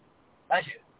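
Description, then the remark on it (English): A single short, sharp sneeze bursts out after a moment of near silence and fades quickly. “Bless you.”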